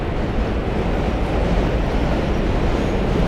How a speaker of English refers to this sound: They had homes on Pearl Street, which is under the very noisy Manhattan Bridge. Maybe if we're lucky, we'll skip in between trains.